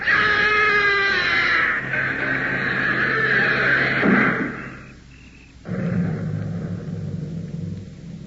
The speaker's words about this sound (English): Inspector, the door is closing.